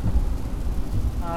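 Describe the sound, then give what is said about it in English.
Steady, heavy wash of rain hammering down and wet road surface noise, with the pitter-patter of raindrops, a dense low rumble with hissing spray throughout, and a voice just starting at the very end. “But yeah, it's very, very wet, so you're getting a lot of surface noise off the road. You're getting a lot of the pitter-patter of raindrops.”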